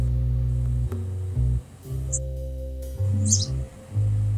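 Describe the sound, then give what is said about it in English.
A couple of brief, high bird chirps sound faintly over a loud, steady low electronic hum that fills the whole recording. “I can hear birds tweeting”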